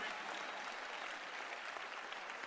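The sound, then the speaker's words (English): An audience claps during a sermon, steady and dense, a continuous wash of many hands with no pauses, fairly loud and sustained throughout, without any voices standing out. “All those who are not clapping, I suspect you.”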